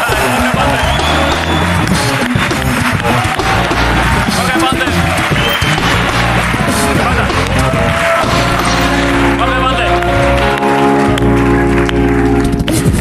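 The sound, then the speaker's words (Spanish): A studio audience at a television program breaks into loud, sustained applause and cheering that fills the whole stretch, with steady tonal music joining underneath in the second half. “Un aplauso para Jorge Ponte.”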